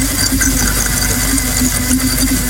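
machine, blender making a smoothie

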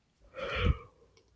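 human body sound, yawning

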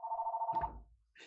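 signal or alarm, landline telephone ringing

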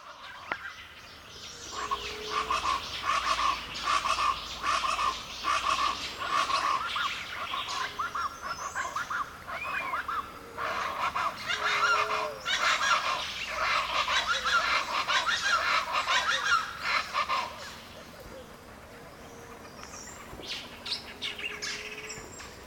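bird, bird calls

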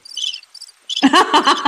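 insect, crickets chirping

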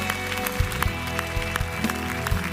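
crowd, audience clapping and cheering

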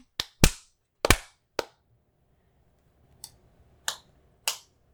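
human body sound, hand clapping

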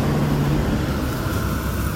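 vehicle, school bus driving past

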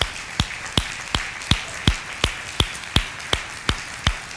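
crowd, audience clapping hands

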